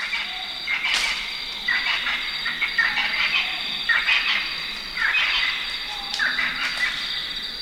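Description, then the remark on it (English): A dense wilderness dawn chorus at a 300-foot cliff in a forest in Zimbabwe near the Mozambique border: steady high insect trilling underneath, with baboons and repeated bursts of croaking amphibians and bird calls rising every second or so, continuous and fairly loud throughout. “It's dawn, and baboons are joined by many different birds, amphibians, and insects to create this wilderness opera.”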